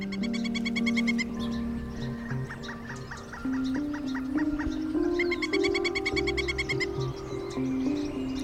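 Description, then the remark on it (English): A northern flicker, a woodpecker, gives its rapid, ringing ray-gun call twice, each a quick stuttering series of sharp notes, over a steady backdrop of other birds calling. “The trademark ray gun call of a northern flicker.”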